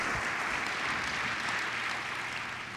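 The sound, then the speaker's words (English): A crowd claps steadily and evenly throughout, a dense, continuous wash of many hands with no voices rising above it, applauding current and past members of the Committee on Trauma at its 100-year celebration. “Could we give the current and past members of the Committee on Trauma and the Committee on Trauma itself for 100-year celebration, round of applause for those current members and past members of the Committee on Trauma.”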